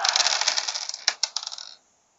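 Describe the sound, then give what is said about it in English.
Eight dice, rolled for a perception check, rattle and clatter across a hard surface, a dense run of quick clicks with a few sharper knocks near the end before settling into silence. Fairly loud. “I know, I keep making you roll the dice. Okay, 8 dice again.”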